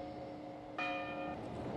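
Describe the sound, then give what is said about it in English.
A church bell in the film The Wicker Man rings out with bright, sustained metallic tones, a fresh strike around the middle layering over a fading earlier one, loud and resonant with no talking. “There's them bells again, man.”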